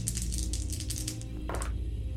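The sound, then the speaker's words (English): Dice for a game move, an action die and two challenge dice, rattle and clatter in a quick, continuous series of bright clicks for about a second and a half, ending in one louder tumble, over a steady low hum with no talking. “So we're going to roll plus wits on this.”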